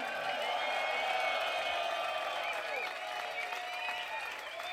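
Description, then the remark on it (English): A crowd applauds and cheers for a keyboard player steadily throughout, dense clapping blended with whoops and whistling voices, loud and sustained without a break, tapering only slightly toward the end. “Make some noise for ….”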